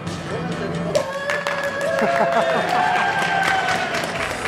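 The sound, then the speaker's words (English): A crowd claps and cheers steadily, with scattered sharp hand claps and sustained whooping voices rising over the applause, fairly loud and continuous throughout, as an audience joins in an 'Applause-O-Meter' cheer invented by Cinescopio at a fashion show. “Applause-O-Meter. It's a really easy, highly technical way of cheering your best friend on.”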